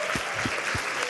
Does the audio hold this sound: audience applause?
yes